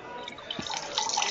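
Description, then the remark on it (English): Liquid pours steadily into a cup, a continuous splashing trickle that grows a little louder toward the end, with no voices. “Either somebody's pouring a drink, or somebody's pissing.”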